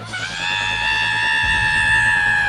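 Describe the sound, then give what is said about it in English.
A woman in a tent, where a rattlesnake is, lets out one long, piercing scream of pain, loud, holding a high, steady pitch for a couple of seconds with no other voices. “Then we heard a pained scream from Mom's tent.”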